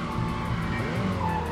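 Old race cars running: engines roar steadily while tires skid and squeal in drawn-out, rising whines, a dense, continuous and fairly loud racing din with no voices.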